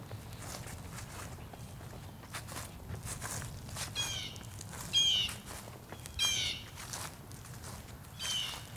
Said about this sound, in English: Leaves crunching beneath my feet.